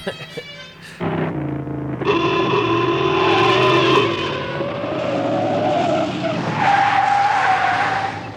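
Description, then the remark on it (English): Loud, continuous tire squealing as a car skids through several sharp turns, the shrill screech shifting pitch with each swerve over a rumbling engine. “That is a great car, man. Fuck, it handles great, man. Left, right, it's great. Brakes stop on a fucking dime.”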